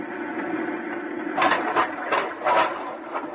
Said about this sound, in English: I'm going to fill the lock. Here goes the outer door.